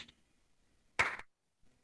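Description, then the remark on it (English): A slow, deliberate clap: a faint slap at the very start, then one loud, sharp clap about a second later with a brief ringing tail, and no voices. “Slow clap.”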